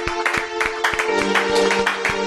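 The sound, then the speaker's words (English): An audience claps hands in praise in a steady, unified rhythm, about three claps per second, over a sustained humming tone. The clapping stays fairly loud and even throughout. “Clap your hands for that.”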